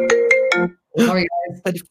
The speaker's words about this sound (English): Turn your phone off. It's probably a sales call coming in.